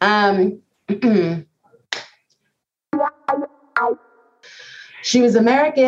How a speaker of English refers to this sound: Did you hear that sneeze? Like, I did. Like, from a movie. Like, what was that even? Is that a human out there?